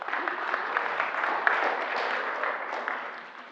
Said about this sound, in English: Could we just give these guys a round of applause? Thanks, guys.